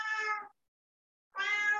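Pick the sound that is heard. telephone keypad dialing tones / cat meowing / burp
cat meowing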